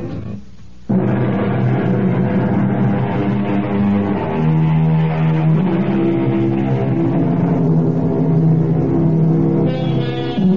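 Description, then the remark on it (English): A car engine catches after a brief quieter moment, then runs loud, its droning pitch shifting a few times as it revs, in an advertisement for Quaker State motor oil. No one speaks. “Quaker State, your car, to keep it running, yeah.”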